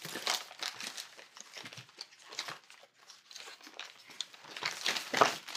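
Paper crinkles and rustles continuously as bottles, some bundled several together, are unwrapped from a bin, with irregular crackling bursts and soft tearing, getting louder near the end. No one speaks.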